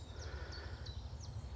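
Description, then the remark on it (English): A chiffchaff sings a steady run of short, high, two-pitched notes repeated at an even pace, in spring, over a low rumbling outdoor background. “I mean, I can definitely hear chiff-chaff.”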